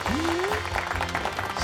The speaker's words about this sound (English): So in third place with 10 votes, Josh Curran. Clap.